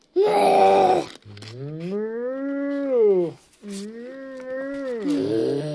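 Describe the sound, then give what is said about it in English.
A person imitates a cow with long, low, droning moos, two extended calls with a gently rising and falling pitch, preceded by a brief burst of sound and ending with a short vocal trail. “What does a cow say?”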